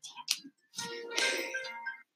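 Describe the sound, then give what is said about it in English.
A phone notification goes off: a couple of quick clicky blips, then a brighter, longer electronic tone with steady ringing pitches that fades after about a second. No one speaks. “Sorry, phone.”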